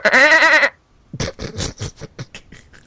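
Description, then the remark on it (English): One loud, wavering bleat like a goat or sheep rings out for under a second, then after a brief pause a person starts talking. “Well, not sure if that was a sheep or a goat.”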